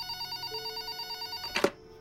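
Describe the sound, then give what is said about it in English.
A telephone rings with a rapid, trilling bell pattern, steady, then cuts off with a sharp clunk as if the receiver is picked up. “Mrs. Prescott hangs up and places the phone down on the cradle when...”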